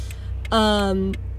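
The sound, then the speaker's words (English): A steady low rumble fills a car cabin on the move, with the soft, regular ticking of the car's turn signal and a brief voiced hum rising over it midway. “Also, I'm in my car. Yes, I'm using my signal like a responsible citizen.”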